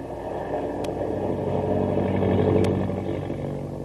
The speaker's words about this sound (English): Hey, we're falling. The plane's out of control.